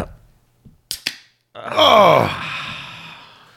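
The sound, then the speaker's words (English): A drink can is cracked open by the microphone: two sharp metallic clicks of the tab, followed by a loud, rushing fizz that fades over a couple of seconds. “Grab your can.”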